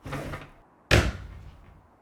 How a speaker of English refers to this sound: Whoa, did she just slam the windows? And the doors, I think. Were the windows open? I don't know.